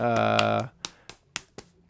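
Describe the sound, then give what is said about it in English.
A short burst of voice gives way to four sharp, separate hand claps at an uneven, unhurried pace, one person clapping while pretending to be an audience. “It was me clapping, pretending I was an audience.”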